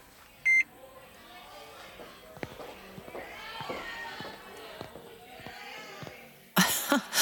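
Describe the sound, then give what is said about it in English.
A single short, bright electronic beep as a doorman scans a check-in code on a phone, then gives way to a murmuring background with soft footsteps and a brief rush of noise at the end. “You manage to find the code David sent us so we can check in as his guests. and the doorman scans it.”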